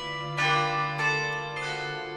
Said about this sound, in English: The others are all standing in the market square just as the clock strikes 9 p.m.